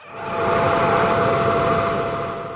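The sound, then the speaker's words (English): A vacuum cleaner drones with a steady, loud whooshing roar and a faint high whine, swelling in quickly and tapering at the end, with no voices over it. “Try screaming into a vacuum cleaner, and all you hear is the vacuum cleaner.”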